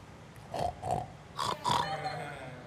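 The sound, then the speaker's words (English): A man imitates a pig, giving four short, nasal snorting oinks in two quick pairs, fairly loud, with a brief pause between the pairs. “Make the Peppa Pig oink, …. Go for it.”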